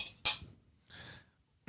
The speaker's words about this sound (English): Okay, let's do a cheers to the rosé. Yeah. Cheers.